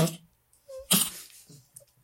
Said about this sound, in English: fake news does this to my dog. As soon as I say CNN, she starts coughing.